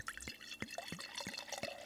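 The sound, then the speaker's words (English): Wine glugs from a bottle into a glass, a quick run of bubbly gurgles about every quarter second over a faint background, with no talking. “I'm looking at Sam's face, and I can tell what he just poured is making him really happy.”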